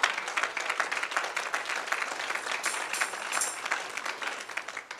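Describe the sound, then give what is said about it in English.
A crowd applauds the leadership of a church, steadily for several seconds, a dense wash of many hands clapping at once, fairly loud and sustained without letting up. “Let us give a round of applause for the leadership of House of Praise.”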